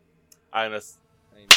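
A single sharp hand clap, loud and crisp, rings out at the end, shortly after a brief spoken utterance and a moment of quiet; the clap is made to sync recordings.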